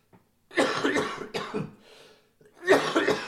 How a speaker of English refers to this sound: There's that coughing I was talking about.